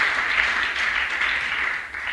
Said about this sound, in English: Oh God, let us clap for ourselves.